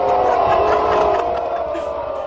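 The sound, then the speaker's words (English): A large stadium crowd of Husker fans boos the drug-free pledge in a sustained, loud, low-pitched roar that holds steady for a couple of seconds with no clear speech. “I guess that's one way to get the drug-free pledge booed.”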